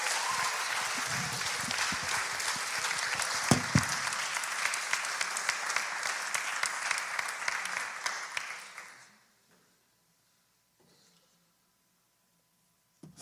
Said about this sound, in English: If we can give Pastor Daryl an applause for all the work that they do.